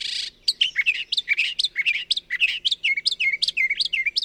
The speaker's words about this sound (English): But they're not the only mimic birds in town. Brown thrashers also learn songs from nearby birds and add them to their repertoire. The species has been documented singing over 1,100 different songs, a mix of imitations and invented little melodies.